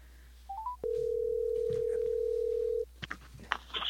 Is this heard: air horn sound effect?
no